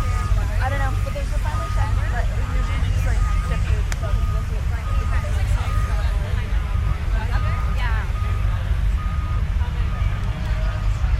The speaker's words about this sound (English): Tow truck.